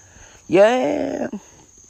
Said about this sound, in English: Just me out here in Cricket Country, Cicadaville, out here in Honeybee Central, chilling out.